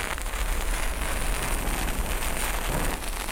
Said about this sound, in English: Let's start with a match. How about a stormproof match? These burn for a while.